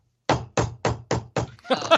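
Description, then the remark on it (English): A rugged, military-grade phone is banged on a table five times in a steady rhythm, each knock a loud, sharp thud. A voice begins speaking right after the last hit. “Bangs it on the table. Smash.”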